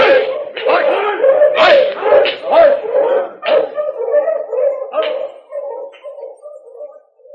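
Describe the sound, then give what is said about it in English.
Several sled dogs bark and yip in quick bursts over a steady, high whimpering whine that continues as the barks thin out and fade toward the end. “Keep an eye on those dog sleds for me.”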